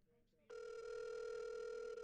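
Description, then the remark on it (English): After a brief quiet moment, a phone's ringing tone comes through a speakerphone, a steady electronic buzz that starts abruptly and holds loud and unbroken to the end. “Let me get it on speak.”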